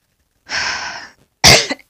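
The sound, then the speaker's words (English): A person with a prolonged cough and a sore throat coughs: a long, raspy hacking cough lasting most of a second, a brief pause, then a sharper, explosive cough with a small trailing catch. No talking. “You know, it's a prolonged cough I got.”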